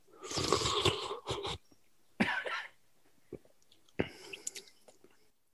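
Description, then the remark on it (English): Slurping of soup in a few airy, noisy bursts, a long one first and shorter ones after, with quiet chewing and mouth sounds in the pauses. No one speaks. “The first bite. I'm going to slurp.”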